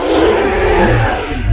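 A loud, growling dragon roar fills the moment, a single sustained bellow with a rough, rumbling low end, swelling slightly toward the finish with no voices over it.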